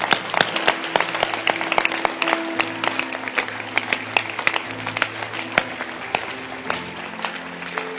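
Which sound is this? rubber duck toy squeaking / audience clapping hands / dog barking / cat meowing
audience clapping hands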